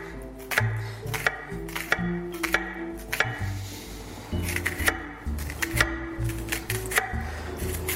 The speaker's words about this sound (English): So let's do a little prep. Going to dice up my onion real quick.